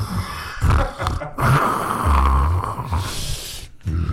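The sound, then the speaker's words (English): A voice imitates Darth Vader's heavy respirator breathing: several loud, hissing, rasping breaths in and out with a low rumbling edge, separated by brief pauses, with no talking. “It's passive aggressive breathing.”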